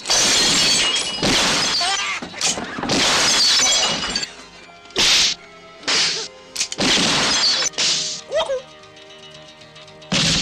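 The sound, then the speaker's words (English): Loud glass shattering in a rapid series of crashes, each burst followed by bright tinkling shards, repeating several times over about ten seconds with brief pauses between. “Gotta hit the glass before it hits the floor.”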